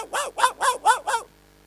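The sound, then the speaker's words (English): Someone imitates a small dog with five quick, high yapping barks in a steady run, loud, followed by a moment of quiet. “It's funny that it's the smallest dogs that make the loudest bark.”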